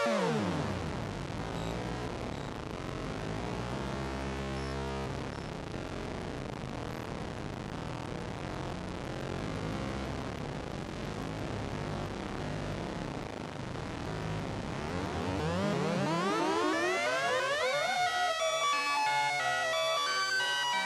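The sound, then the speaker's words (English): A modular synth drone, a sine wave fed into the Bad Comrade with no modulation, made buzzy and rich with wavering overtones, hums steadily and loudly, then breaks into rising, sweeping pitch glides near the end. No one speaks. “It kind of sounds like a haunted ice cream truck.”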